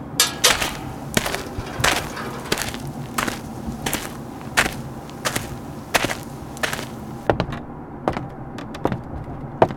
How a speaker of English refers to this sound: Let me just get in and knock on the door.